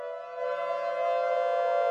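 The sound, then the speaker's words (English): An air raid siren, sounded in a weekly alarm test every Monday at noon across the city, gives a steady, sustained wailing tone, rich in harmonics, holding one pitch and swelling slightly louder over two seconds, with no voices. “Of course, weekly air raid alarm testing, each and every Monday at noon, wailing across the city, helped to reinforce this commitment.”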